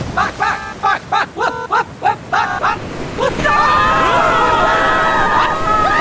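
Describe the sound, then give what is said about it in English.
A loud, steady roar of rushing tsunami floodwater filling a dome surges in after a few seconds, following several short shouted cries, with high wailing tones threading through the torrent. “The dome is filling with water!”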